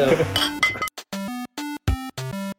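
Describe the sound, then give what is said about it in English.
Glasses clink together in a quick, bright clatter, followed by four short, steady tonal notes in an even rhythm. “Yeah, cheers, crypto.”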